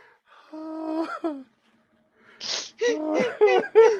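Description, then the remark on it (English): A woman gives a drawn-out, strained wheezing groan. After a short pause comes a rapid run of five or six harsh, raspy coughs and gasps, fairly loud. “Her cough was crazy.”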